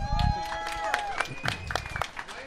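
A crowd applauds with dense, steady clapping that fills the whole stretch, mixed with whoops and a few high whistles rising over the claps.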